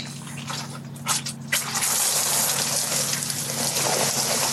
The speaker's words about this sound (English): Hey, it's raining. You made it rain.